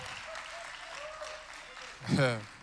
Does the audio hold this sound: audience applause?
yes